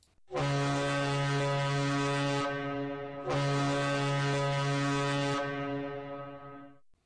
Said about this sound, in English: Until next time, I will leave you with the sound of a cruise ship horn to close out this week's show.